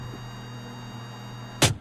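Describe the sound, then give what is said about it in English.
A steady, low rumble of an old, overheating truck engine idles throughout, even, with no talking. Near the end, a brief loud burst of noise cuts in over the hum. “You got to pay attention to the truck.”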